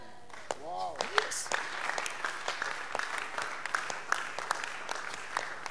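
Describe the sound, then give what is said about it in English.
An audience at a church service claps steadily, a dense patter of many hands forming sustained applause, with a brief voice rising in pitch near the start. “Oh, if you are not clapping, you are already missing in church every service.”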